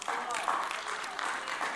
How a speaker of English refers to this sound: Golf clap, listen.